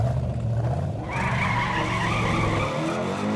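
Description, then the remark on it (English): A car engine roars loudly and steadily at high speed as it is driven around a track at about 120, about to shift into fifth gear, with a sharp high-pitched whine or tire squeal joining in after the first second. “120 now, about to go to fifth gear.”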